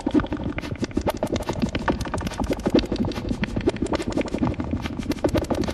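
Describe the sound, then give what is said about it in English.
A synthesizer pattern run through the Alter filter from Ritual Electronics, frequency turned well down and resonance up a lot, drenched in delay and reverb: rapid, clicky pulses repeat steadily and smear into a dense, churning wash that holds an even loudness throughout, with no voices. “Add that delay and reverb back.”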